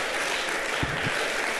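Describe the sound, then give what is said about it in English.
An audience claps their hands while praying in the name of Jesus, a dense, steady wash of applause, loud and continuous throughout, with a couple of brief low thumps partway through. “Come on, clap your hands and pray right now.”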